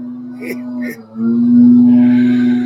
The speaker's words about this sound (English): Sorry for the sound, guys. They're out there weed eating.